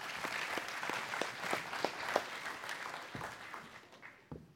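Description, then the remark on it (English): An audience at a morning service applauds people as they are being seated, with dense, steady clapping from many hands, moderately loud, thinning out and fading over the last second with no talking. “Y'all give them a hand clap this morning as they're being seated.”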